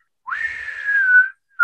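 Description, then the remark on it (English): A person whistles a single signal call: a quick upward swoop into a long, steady, slightly sagging note, then a brief pause before another whistle starts. Fairly loud, no talking. “Damn, my whistling sucked.”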